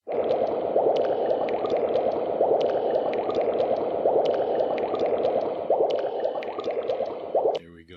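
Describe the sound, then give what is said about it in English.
Continuous bubbling and gurgling liquid, like laboratory tubes, fills the whole stretch at a steady close level, with small popping drips scattered throughout before it cuts off abruptly. “Bubbling tubes and stuff.”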